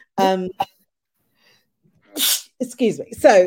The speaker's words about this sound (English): Sorry, I'm going to sneeze, excuse me.